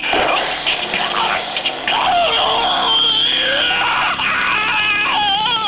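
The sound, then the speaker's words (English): A man screams and wails in anguish while being shocked by a taser drone, loud, in a continuous strained outburst lasting several seconds, his voice rising and wavering with barely a pause. “That was a good scream.”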